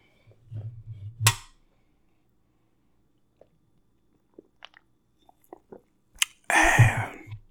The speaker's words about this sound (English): So, you know, I guess it sounds like it's time for another sip.